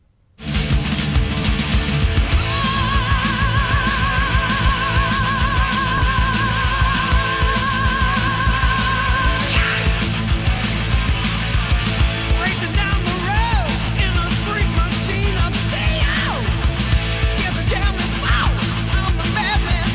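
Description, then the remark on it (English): Loud, dense thrash metal plays continuously from start to finish, with distorted guitars, pounding drums and high-pitched screamed vocals riding over the driving wall of sound. “I can see why he would throw out his voice with that. There's a lot of high intensity screams.”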